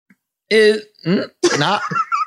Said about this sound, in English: Because I'm going to burp it. Okay, burp it.